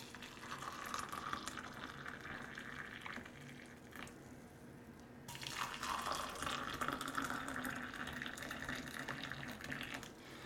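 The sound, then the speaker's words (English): Hot water pours steadily into a cup over a small spoonful of tea, a continuous splashing stream that pauses briefly midway, then resumes with its pitch rising as the cup fills. “And then some hot water.”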